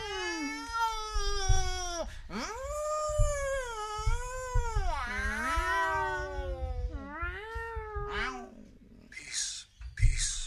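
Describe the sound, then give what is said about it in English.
Voices imitate cats with a string of long, wavering meows and yowling wails, fairly loud, ending in a couple of short breathy hisses or spits. “just descended into making cat noises for our podcast.”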